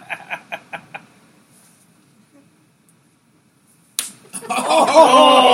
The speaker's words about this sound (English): Oh! That was a good one. It was a gentleman's slap.